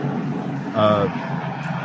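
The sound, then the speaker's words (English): A steady roaring rush of microphone feedback, like an airplane taking off, with a brief whining tonal swell near the middle before it settles back into the constant drone. “We're getting a lot of feedback from somebody. Okay. Sorry. Sounds like an airplane taking off.”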